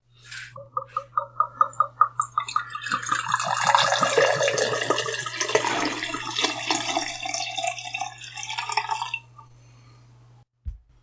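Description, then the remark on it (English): A bottle glugs rapidly in a quick series of gulping pulses as whiskey is poured from a new bottle, settling into a steady splashing pour for several seconds over a low hum. “I love that noise, the bit when you've got a brand new bottle of whiskey and you're just pouring in it and it does that.”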